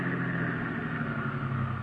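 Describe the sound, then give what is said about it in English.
A steady, low car engine rumble idles with a constant hum and no speech as the car stops, the motor running evenly at rest for a couple of seconds. “Now stop your car.”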